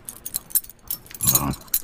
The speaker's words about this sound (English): It's keys, brother. I was like, these keys sound a little less key.